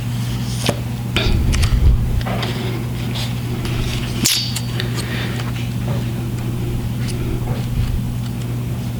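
Book pages being rifled through: a string of quick, papery flicks and rustles at an irregular pace, with one sharper snap partway through, over a steady low hum with no voices.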